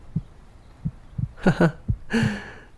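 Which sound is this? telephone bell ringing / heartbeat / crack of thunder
heartbeat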